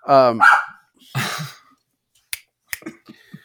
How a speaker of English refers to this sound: Excuse me. My dog has seen something.